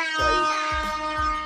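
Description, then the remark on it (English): A loud, brassy air horn blares continuously, layered with three deep booming hits spaced about half a second apart; no one speaks. “Air horns on you niggas.”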